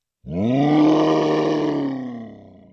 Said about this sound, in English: I remember the story about some children in Kenya who had to cross forests to reach the school. I think they also heard a lion roar and they had to hide behind a bush.